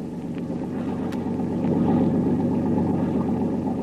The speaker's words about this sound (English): Listen, Tuan. Another motorboat maybe follow us. I hear it.